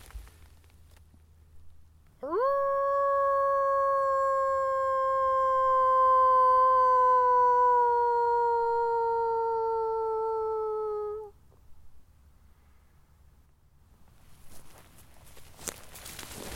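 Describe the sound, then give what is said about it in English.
A person in wolf country in Germany gives one long, loud wolf-like howl lasting about nine seconds, trying to get a wolf to howl back, swooping up sharply then slowly sliding lower. Quiet outdoor ambience follows, with brief rustling near the end. “I gotta try one more wolf howl.”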